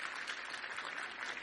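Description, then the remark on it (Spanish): An audience at a morning church service applauds the Lord together, a steady, dense wash of many hands clapping that stays loud and even throughout, with no voices standing out. “Denle el aplauso fuerte al Señor.”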